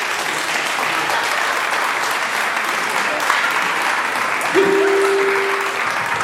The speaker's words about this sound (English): So give my good friend Mark Smith a round of applause.